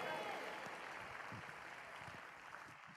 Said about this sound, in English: If you receive that tonight, go ahead and do what you're already doing. Clap your hands in Pittsburgh. Clap your hands in Fort Worth.